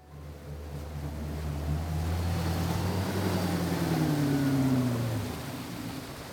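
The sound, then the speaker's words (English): A boat motor drones steadily out on open water on a sunny day, over a wash of water and wind noise, its low humming tones sliding slowly downward in pitch before easing off near the end. No one speaks. “Okay, here we are, out on the water.”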